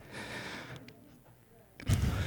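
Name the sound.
heavy breathing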